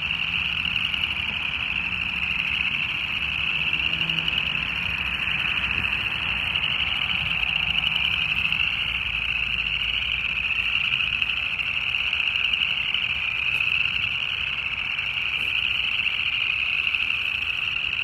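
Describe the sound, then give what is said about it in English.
A dense, steady chorus of many frogs trilling and croaking together at a little farm frog pond in springtime, at 6:06 p.m. on February 28 under cloudy skies, filling the air continuously with a bright, shrill drone, moderately loud and unbroken, with no talking. “Site one, as you can guess, is the little frog pond.”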